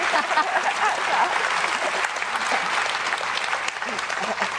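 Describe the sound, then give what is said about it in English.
An audience applauds at the start of an event where Kate Moss interviews Lynn Barber, a dense, continuous patter of many hands filling the room without letting up for the whole few seconds. “Yes, I think a round of applause just...”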